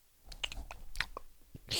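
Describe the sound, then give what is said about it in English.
Wet, smacking gum chewing with the mouth open, a run of irregular clicks and squelches over about two seconds, ending in a louder hissy smack. “That's what it sounds like when I chew gum.”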